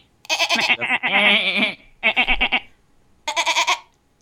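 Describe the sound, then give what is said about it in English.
A voice imitates a goat's bleating: a long, quavering, nasal bleat, followed by two shorter bleats, each separated by a brief pause. “Are we just making goat / dolphin noises at us?”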